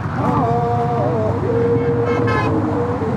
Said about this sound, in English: The group steps onto a pedestrian walkway. The bridge shakes and hums from the force of cars. It's unbearably loud. The walkers sing, but the noise drowns out their songs.